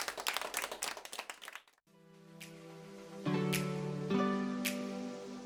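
A short burst of dense, steady applause from an audience for special guests ends abruptly, followed by sustained musical tones with chord changes and a few bright high accents.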